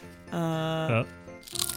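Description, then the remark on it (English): A drawn-out voiced tone, steady then dipping in pitch, gives way to a short, crackly burst of chips being crunched into the microphone at the end, a few rapid crisp crunches lasting under half a second. “As this continues on for too much longer, I'm starting to eat chips into the mic.”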